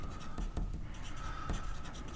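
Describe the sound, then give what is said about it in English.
Steady scratching of a pen or pencil moving across a paper character sheet as details are filled in, with a few sharper taps and strokes breaking the continuous writing sound; no one speaks. “There's a lot of detail I've had to fill in on this sheet.”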